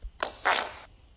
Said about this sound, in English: All right, people, we're up to fart number three. Can you name this fart? Ooh, it sounds like a wet, juicy one. Shall we hear it again?